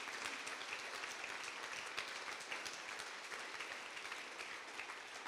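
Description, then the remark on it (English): An audience claps together in praise to God, a dense, steady wash of many hands striking at once, loud and sustained for several seconds with no voices standing out above it. “Come on, come on, give Him the best clap of praise.”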